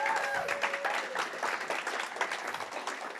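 A church audience applauds to honour a member who stands up, the first person to move country to be part of the church: steady dense clapping filling the whole stretch at an even loudness, with a faint tonal whistle or squeal briefly audible early on.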